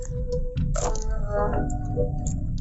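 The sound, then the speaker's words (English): Puzzle books being tossed back and forth: a few papery flutters and soft slapping catches over a steady low background rumble, with no one speaking. “They toss the puzzles towards each other.”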